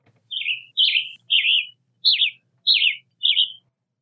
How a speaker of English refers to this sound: Well, let's listen what a tanager sounds like.